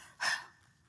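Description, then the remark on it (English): A single sharp, forceful breath pushed out by a voice imitating hard, angry breathing as a sound effect for rage, a short noisy burst that fades quickly into quiet. “Passion, as if breathing hard.”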